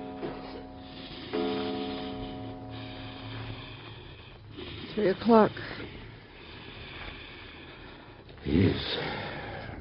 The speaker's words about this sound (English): Listen to the way he's breathing. It's getting worse. He's getting worse, isn't he, Doctor? Listen to it.